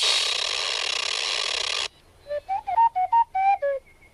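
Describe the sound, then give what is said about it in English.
A loud burst of mechanical whirring noise stops abruptly, then Bubo, the mechanical owl in the film Clash, chirps out about eight quick, warbling whistles that bend up and down in pitch, ending on a faint, thin tone. “His name is Bubo. But you're quite right, Bubo the Owl, a personal favourite of mine.”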